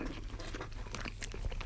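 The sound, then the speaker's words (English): Munching and chewing of food, with soft crunchy bites and wet mouth sounds in an irregular rhythm, fairly quiet and steady throughout, with no talking. “We're going to put that aside as we're munching away here.”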